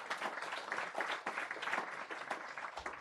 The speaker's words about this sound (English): Thank you, Barry. Can you give a hand of applause to Barry?